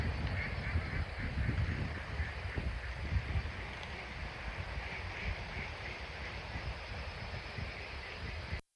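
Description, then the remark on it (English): A big flock of ducks takes off together from dry ground, producing a steady, dense rush of wingbeats and whistling wings mixed with scattered quacks. It stays fairly loud throughout with no voices, then cuts off abruptly. “You can even hear the whistling of the wings.”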